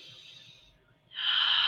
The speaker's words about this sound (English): The deep, deep breathing. The deep breath also connects us to the source, to source. And the deep breathing.